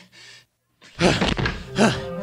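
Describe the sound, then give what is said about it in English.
Professor Hinkle, huffing and puffing, slams a door shut, locking two inside, with a loud, heavy thunk surrounded by breathy huffing and strained vocal noises. A soft hiss comes first, then a short pause before the slam. “Professor Hinkle, still huffing and puffing, catches up and slams the door closed, locking them both inside.”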